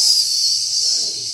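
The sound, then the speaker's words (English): A steady, continuous hiss of steam fills the background, bright and airy, with no breaks or changes in intensity across the short stretch. “Yeah, We've got a good steam sound behind us.”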